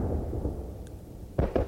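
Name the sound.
fireworks going off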